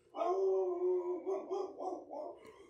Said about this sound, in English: He seems upset. Yeah. That bark implies that there's absolutely nothing outside.